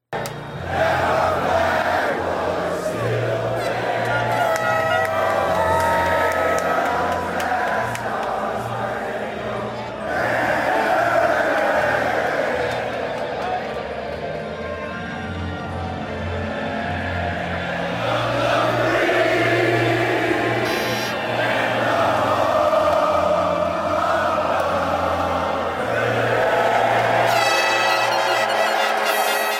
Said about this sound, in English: But basically, it was the crowd singing the national anthem. I mean, I don't know how many. I think they reported almost 50,000 people there